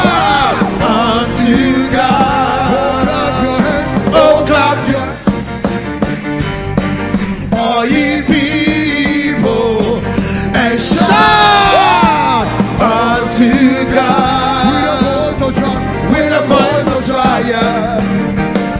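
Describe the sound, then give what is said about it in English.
An audience claps and shouts unto God together in a loud, continuous swell, with many voices whooping and yelling over steady rhythmic clapping, filling the whole stretch without pause. “For ye be bold and shout unto God. Clap your hands. Oh, clap your hands. For ye be bold and shout.”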